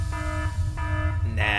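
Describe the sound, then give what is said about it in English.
A buzzy, harmonic alarm sound effect pulses in two repeated bursts over a steady low rumble, then jumps to a higher, brighter blaring tone at the end. “Can you hit some sort of alarm sound maybe?”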